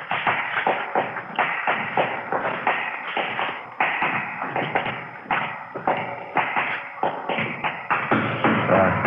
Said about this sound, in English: Better close the door, huh?